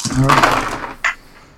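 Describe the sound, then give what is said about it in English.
A busy clatter of seven dice (three proficiency, one boost, three difficulty) tumbling across a hard surface for most of a second during a tabletop game stealth check, followed by one sharp final click as a die settles. “Okay, so I have 3 proficiency dice, a boost die, and 3 difficulty die. Here we go.”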